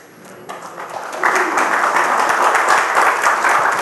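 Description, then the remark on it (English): A church audience breaks into applause, starting as scattered claps and swelling after a second into a steady, full wash of clapping that holds loud to the end. “You can clap.”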